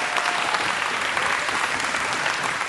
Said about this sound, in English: So really just recognize that from these guys. So give them one more round of applause that we got.